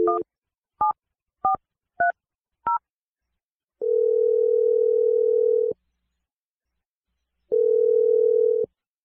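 Five quick touch-tone beeps as a number is dialed, followed by two long, steady ringback tones with a pause between them, clear and close with no voices.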